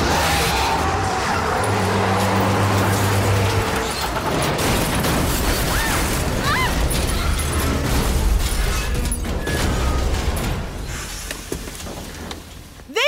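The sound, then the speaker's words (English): A truck engine roars on a highway, tires squeal as it swerves around someone running out in front of it, then a heavy, sustained crashing and tumbling clatter follows as the truck rolls over and ends upside down, before the din cuts off near the end. “Right at that moment, a zombie runs out in front of him, and guess what? He swerves!”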